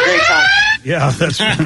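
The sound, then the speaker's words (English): A loud electronic alarm tone sounds steadily for under a second, slightly rising in pitch, then cuts off as a man starts talking. “We have an alarm on.”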